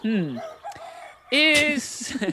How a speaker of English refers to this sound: Oh, what was that then? That was how it was. That was the chickens.